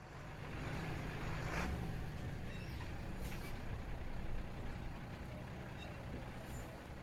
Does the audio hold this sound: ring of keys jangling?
no